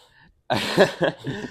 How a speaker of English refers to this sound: Oh my God, I got a cough. Oh, you got it too? I got the cough too.